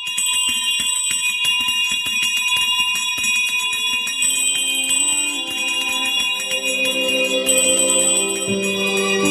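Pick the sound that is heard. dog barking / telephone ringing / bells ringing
bells ringing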